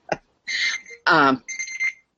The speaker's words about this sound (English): Somebody's alarm went off.